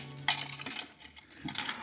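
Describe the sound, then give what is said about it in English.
Metallic jingling and clinking of a ring of keys, fairly quiet, with irregular rattles and scrapes as they are handled and tried against a lock. No voices. “I know one of these keys is supposed to fit.”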